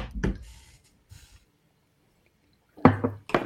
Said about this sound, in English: Gonna hit him one time with a drip drop.